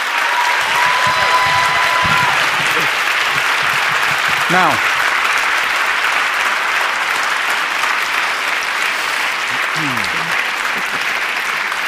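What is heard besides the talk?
audience applause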